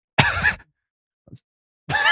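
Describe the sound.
A person at the back imitates a monkey shriek with two loud, shrill, wavering vocal bursts and a brief soft sound in the silent gap between them.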